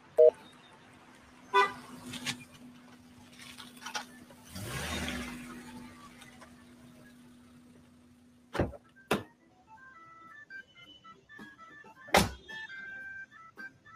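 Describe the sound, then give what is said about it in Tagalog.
A car approaches with a steady engine hum and a short horn toot near the start, followed by a whoosh as it pulls up and several sharp door-like thunks. “Teka, anong sasakyan niya na itong paparating ha?”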